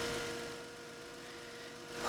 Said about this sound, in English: I don't like that this car's left on. I'm gonna reach out and turn it off?